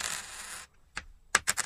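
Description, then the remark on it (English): Metallic £1 coin sounds as coins are dropped to test their sound: a bright rattling jingle for over half a second, a short pause, then several sharp, separate clinks as the coins drop onto a hard surface. “I'm trying to think what they sound like.”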